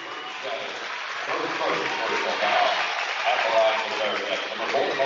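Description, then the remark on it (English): A Kearney High basketball crowd cheers and roars steadily for several seconds, with Kearney High leading 57-49 and 3.6 seconds to go. A dense wash of many voices swells slightly midway, with shouts rising out of the noise. “And listen to the crowd.”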